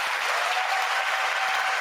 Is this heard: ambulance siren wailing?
no